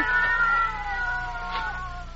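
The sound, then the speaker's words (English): Cats fighting, yowling and caterwauling in a tense standoff, long wavering howls that rise and bend, fairly loud, with a second cry joining in near the end. No one speaks. “What's that? Cats. Oh, I'll break that up.”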